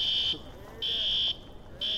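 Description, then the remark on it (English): A school fire alarm at an elementary school in Jefferson County, Colorado, sounds during an evacuation drill: a loud, shrill, steady high-pitched tone in half-second blasts separated by brief pauses, repeating over a low murmur of background noise. “This is an elementary school in Jefferson County, Colorado, and they're running an evacuation drill.”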